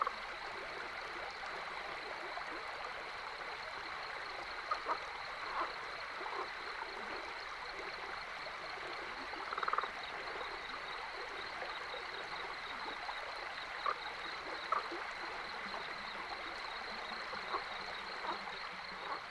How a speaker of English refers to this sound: Ah, the cackles of a Rio Grande leopard frog, coming from a short distance downstream.